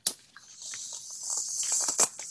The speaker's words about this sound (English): A little shuffling.